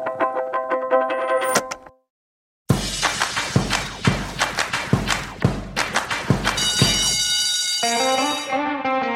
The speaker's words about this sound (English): That bell can only mean one thing. It's time for Planet Money Summer School.